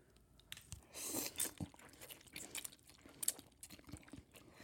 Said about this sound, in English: What is it called when you eat on camera? And like people just listen to you. Is it mukbang?